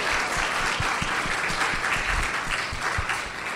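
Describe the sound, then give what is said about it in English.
Steady, dense applause from an audience for a group of women being honored, many hands clapping in a continuous rapid patter that stays loud and even throughout, with no voices standing out. “Let's give these mana wahine round of applause.”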